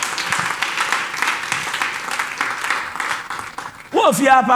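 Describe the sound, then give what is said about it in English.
An audience claps together in a dense, steady wash of applause for about four seconds, then a man's voice cuts in loudly, speaking over the last of the clapping. “I thought you were going to clap to Jesus.”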